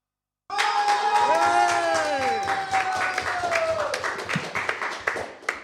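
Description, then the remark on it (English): A studio theatre audience bursts into loud cheering and whooping when asked which team deserves to win tonight, with steady clapping running throughout for several seconds and rising shouts over a dense wash of applause. “Even the crowd reaction was 50-50.”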